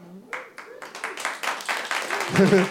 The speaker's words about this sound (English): I don't. The way I said that, I don't know which one they're applauding for.